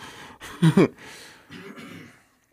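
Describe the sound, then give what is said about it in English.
A person turned away from the microphone lets out two quick, harsh coughs in close succession, then a softer, raspy follow-up sound trails off. No one speaks. “Cough as hard as you need to, as far away from the mic as you can.”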